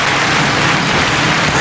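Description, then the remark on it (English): A steady, dense wash of applause-like clapping, loud and unbroken, with no individual claps standing out and no voices over it. “The applause that got stuck.”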